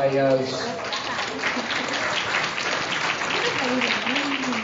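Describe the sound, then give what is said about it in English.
Sustained applause from a crowd, a dense steady patter of many hands clapping for several seconds, with a few voices calling out over it at the start and near the end. “Clap, you bastard!”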